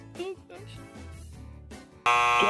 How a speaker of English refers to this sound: The buzzer. You just missed it.